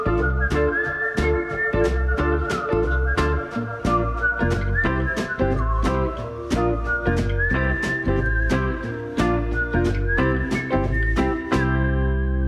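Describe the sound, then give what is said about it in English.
A person whistles a sustained, wavering melody over a steady backing track, with a regular beat and deep bass pulsing underneath throughout. “I told him to stop whistling.”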